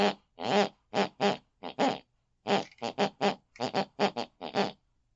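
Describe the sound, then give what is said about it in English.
A woman asleep in bed snores a run of about fifteen short, buzzy snoring snorts, grouped in quick rhythmic bursts with gaps, their pitch shifting so they trace out a tune-like pattern. No talking. “She then snores.”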